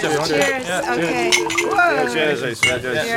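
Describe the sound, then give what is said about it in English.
Several bright clinks of glasses of mulled wine touching in a toast at a party, a few quick taps ringing out over a bed of overlapping voices and chatter. “Yeah, oh, by the way, cheers with the mulled wine. Cheers.”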